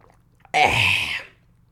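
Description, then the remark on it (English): A stand-up comedian takes a single loud slurping sip of water, lasting under a second, with quiet surroundings before and after and no talking. “Quick sip of water, folks.”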